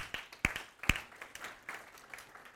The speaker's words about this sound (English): Can we just clap for that? Come on.